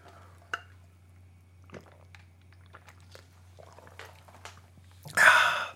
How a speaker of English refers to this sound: I'm drinking water now, if you care. I'm not drinking coffee because it is noon here and I've already had enough coffee for one day. So I'm drinking water now.